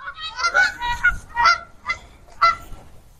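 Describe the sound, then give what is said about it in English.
Several geese, being chased by a small dog, honk in a noisy, overlapping burst of harsh, nasal calls, fairly loud, with a few distinct honks standing out over a low rumble of background noise. “Dog's chasing the geese.”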